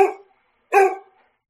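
A dog barks twice, loud, with a short pause between the two sharp barks and no voices around them.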